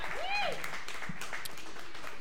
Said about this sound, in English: Can we just give them one more round of applause? Thank you.